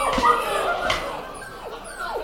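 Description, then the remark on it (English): A person imitates a whimpering greyhound, making a few high, whiny squeals that slide downward in pitch, moderately loud, with no talking. “Is that what you think greyhounds fucking sound like?”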